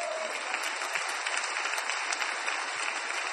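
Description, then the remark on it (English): A crowd applauds steadily, a dense, even wash of many hands clapping at once that holds at a fairly strong level for a few seconds with no voices over it. “And they're clapping for this direct revelation.”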